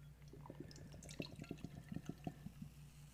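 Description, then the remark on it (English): Beer pours steadily into a glass, with rapid gurgling splashes and a soft fizzing hiss, fairly quiet, no voices. “Yeah, this is a TV pour for me.”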